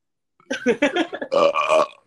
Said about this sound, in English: Oh, here comes the burping section. Oh. All right, let's play the second game. 3, 2, 1. Guess that burp. 1.